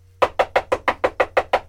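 A rapid, steady run of about nine loud knocks on a door, evenly spaced and close by, with no voices and only a faint low hum underneath.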